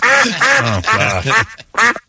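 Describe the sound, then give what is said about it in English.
Loud duck quacks, about five nasal honks in a quick, almost rhythmic run with a short pause before the last one. No other sounds or talking. “The last thing I want to do is listen to those terrible noises those kids were making in the first place, harming all those ducks with.”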